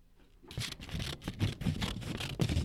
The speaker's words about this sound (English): Was it scissors cutting paper or was it a knife and fork? What was the right answer? Scissors cutting paper. It was. It was scissors cutting paper.